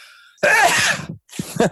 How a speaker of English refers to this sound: I'm going to sneeze.